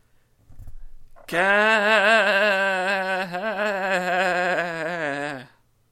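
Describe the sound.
A person loudly imitates a goat with one long, wavering bleat lasting about four seconds, preceded by a brief soft breath or murmur.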